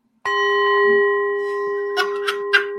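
A school bell rings out suddenly and loud, holding a bright sustained tone, then clangs several more times in quick, uneven strikes near the end. No voices.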